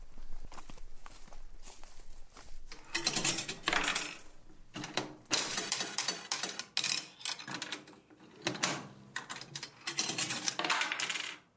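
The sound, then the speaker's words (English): A penny slot machine of a kind familiar from the 1950s pays out coins at Headhunters, a barber shop and railway museum in Enniskillen, in several loud bursts of bright metallic clattering, each cascade of pennies rattling down for a second or so with short pauses between. “He's trying his luck on a machine that will be familiar to the passengers of the 1950s express.”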